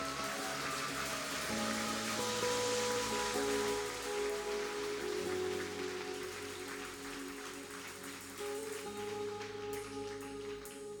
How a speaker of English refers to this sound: Can we give the Lord a big clap? Amen.